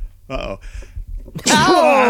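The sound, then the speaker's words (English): A single loud sneeze bursts out after a couple of short, breathy voiced inhalations building up to it. “The mandible sneeze.”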